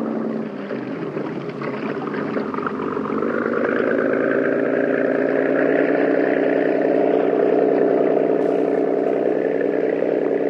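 A cabin cruiser's engine runs steadily as the boat is backed out of a boathouse into clear water on a river, a deep, throaty drone and rhythmic chugging, swelling slightly louder after the first few seconds and then holding constant, with no voices.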